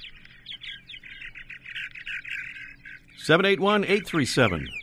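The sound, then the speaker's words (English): A fast-flying bird that catches prey in midair, reaching speeds over 40 miles an hour, sings quick, high twittering notes repeating steadily for about three seconds, then a much louder, nasal, voice-like burst of harmonic sound takes over and cuts across it. “And here's that song once again here.”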